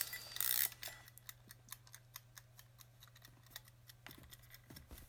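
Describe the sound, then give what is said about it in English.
A mechanical kitchen timer is wound up to 20 minutes for a work session, a quick burst of grinding followed by a steady run of sharp, evenly spaced ticks over a low hum. “Let's wind up the timer.”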